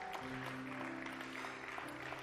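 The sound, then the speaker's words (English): A church audience claps together in a steady, dense wash of hand claps, with a low sustained musical tone humming underneath throughout. “Come on, keep clapping your hands.”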